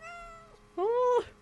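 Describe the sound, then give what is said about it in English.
Two short meows from Luna, a cat, the first soft and fading, the second louder and rising after a brief pause, with no talking over them. “Did you hear her little meow?”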